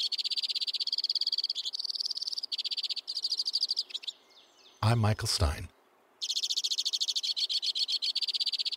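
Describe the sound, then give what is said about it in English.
Rapid, high-pitched chirping calls of crossbills among snowy conifers in winter pour out in dense, steady trills, pausing briefly while a man speaks a few words, then resuming just as busily. “So even in the grips of winter, when most songbirds are months away from the breeding season, somewhere among the snowy conifers, crossbills are already warming up.”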